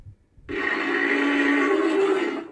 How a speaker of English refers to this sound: decided that since they're making something with the size, behavior, and personality of a marine animal, then they should give it a voice to match. So this is a walrus, which was used to give her weight and show the audience just how big she is.